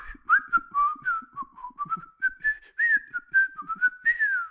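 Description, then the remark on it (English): A person whistles the tune the enemies whistle in the video game Max Payne, a short, bouncy melody with quick rising and falling notes in a steady, tuneful rhythm, a few soft breathy noises between phrases. “But Max Payne, I played that one, about that whole trilogy so many times, I can still whistle the tune that the baddies... I was going to say sing, but they don't sing it, they whistle it.”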